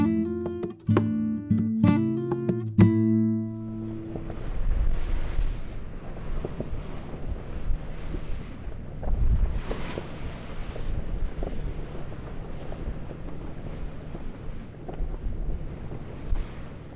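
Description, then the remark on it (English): A few seconds of tonal notes give way to a sailboat, the African Queen, at sea along the Panamanian coast through the San Blas Islands: steady gusting wind buffets the microphone while waves wash and slosh continuously against the hull, with no voices. “So this was our life for 5 days, sailing along the Panamanian coast through the San Blas Islands”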